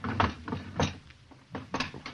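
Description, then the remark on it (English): Heavy pounding knocks on a wooden inn door early in the morning, two quick groups of loud, booming thuds separated by a brief pause, with no voices. “You needn't beat the door down.”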